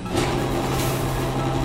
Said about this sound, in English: The inside door is opening!